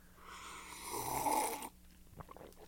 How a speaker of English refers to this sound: We both sipped at the same time. Yeah, that's right.